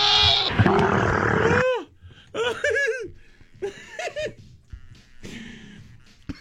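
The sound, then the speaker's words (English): A person imitates a lonely camel encountering a goat: a loud, long, rasping roar, then three shorter wavering bleats like a goat, each separated by a brief pause. “just heard what could possibly happen if a lonely camel with its doula out encounters a goat.”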